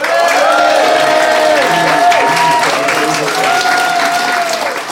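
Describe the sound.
Sustained audience applause, given as a vote for one side of a dispute, loud and steady throughout, a dense wash of clapping with some cheering and voices mixed in, fading slightly at the end.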